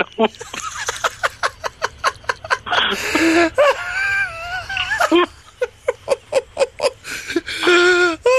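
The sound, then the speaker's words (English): Someone blows a string of sputtering tongue raspberries in quick, rhythmic bursts, broken up by a few higher, whiny vocal sounds before the fluttery blowing starts again. “No, wait, those blowing things that sound like a fart.”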